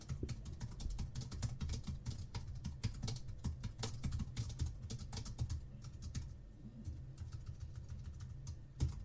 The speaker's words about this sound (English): I like this keyboard. It's quite noisy. It's clacking. Yeah, and you're heavy typing. Oh, I hammer it.